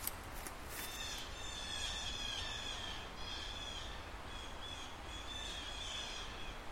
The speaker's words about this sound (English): That was interesting. Yeah. Those were blue jays. I love blue jays. Yeah, I know. Member of the Corvid family.